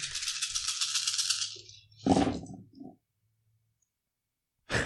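many dice being rolled

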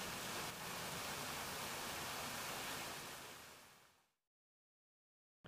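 rushing waterfall

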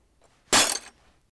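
glass cracking

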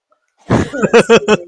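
coughing

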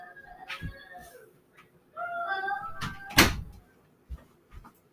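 door being closed

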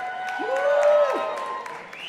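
audience applauding and cheering

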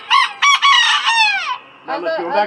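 rooster crowing

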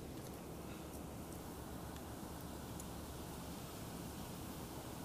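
wind blowing outdoors

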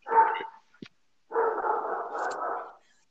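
dogs barking

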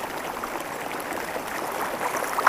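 flowing river water

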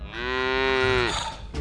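cow mooing

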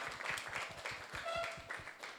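audience clapping

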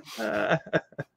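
throat clearing

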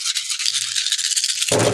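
dice being rolled

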